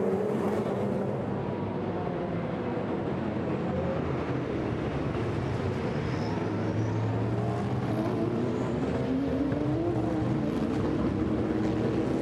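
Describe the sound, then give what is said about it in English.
A pack of GTP prototype race cars, the top eight, roars steadily and loudly as they accelerate through the final corner, turn 11, at the race start in Long Beach, engine notes layering together and climbing in pitch, with no voices over the din. “And the GTP field, the top eight, come together and then head for the hills as they hit the floor.”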